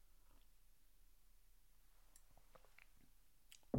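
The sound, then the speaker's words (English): A quiet sip: a few soft wet mouth clicks and slurps over a faint background hiss, ending in one sudden louder knock. No one speaks. “Okay, let me take a sip.”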